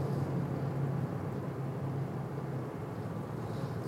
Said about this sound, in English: That is a very loud truck.